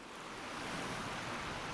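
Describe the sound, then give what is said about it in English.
A steady, broad wash of ocean surf from the documentary series Blue Planet II fills the short stretch, waves rushing continuously at an even, fairly loud level with no voices. “The ocean, the largest habitat on Earth, a generation ago, the series The Blue Planet took us beneath the waves.”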